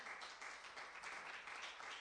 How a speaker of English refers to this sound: In Jesus' name, let's give the Lord a hand clap of praise tonight.